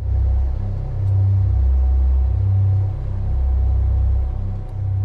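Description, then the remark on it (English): The low-frequency throbbing hum of Taos, New Mexico: a deep, steady hum throbs continuously at a very low pitch, swelling and easing in slow, regular pulses about every second and a half. There is no speech, only this droning rumble. “The low-frequency hum deprives people of sleep and depletes their energy.”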